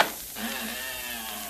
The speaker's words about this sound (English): I got to open this trap door.